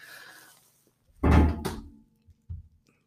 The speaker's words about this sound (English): Whoops, dropped my phone.